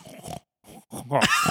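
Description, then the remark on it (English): A human voice imitates a French pig, making a few short grunts and then a longer, rising snorting squeal, fairly loud, with brief pauses between bursts. “add a bit of a snort in there and make him a French pig.”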